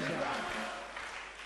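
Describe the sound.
A church audience claps hands in a steady, dense wash of applause, with raised voices shouting 'deliverance' over it at the start before the clapping carries on alone, fairly loud throughout.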